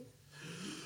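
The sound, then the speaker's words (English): A single forceful, exaggerated breath drawn in, a rushing airy sound that swells over about a second and holds steady near its end, with no talking. “No, that's not how you breathe.”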